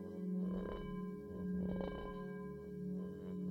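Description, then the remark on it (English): A sustained, softly vibrating bell-like ding, struck with a mallet, rings steadily with layered overtones, swelling in three gentle pulses over the quiet background. No one speaks. “When struck with a mallet, they create a deep, vibrating tone, like the ding of a bell. The tranquil sound ripples through the air”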